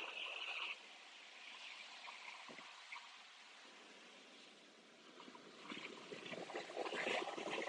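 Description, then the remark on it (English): Atlantic Ocean water washing steadily at night, with lightning in the sky, a broad soft hiss with gentle swells rising and falling, with no one speaking. “you're listening to A Night at the Atlantic Ocean”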